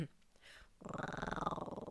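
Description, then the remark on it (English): After a brief quiet moment, a person imitates a cat growl in the style of Tigger: a loud, raspy rumble with rapid rhythmic pulsing that holds steady for over a second. “And I do have, like, the perfect cat growl. Shall I demonstrate for our listeners?”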